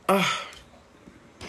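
human body sound, sneeze

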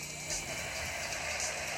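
vehicle, truck engine idling

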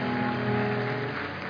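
crowd, audience clapping

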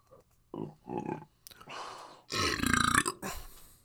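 human body sound, burp

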